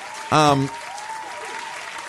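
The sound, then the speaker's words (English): A steady wash of applause at the Queen City Awards runs under the whole clip, with a short, loud tonal blast cutting in near the start before the clapping continues at a moderate level. “Let's get them some hand claps before they catch these strays.”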